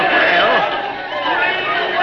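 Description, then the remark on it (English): A dense crowd chatters and calls out continuously, many overlapping voices forming a loud, steady wall of babble with occasional raised shouts rising above the mix. “Oh, listen to that crowd.”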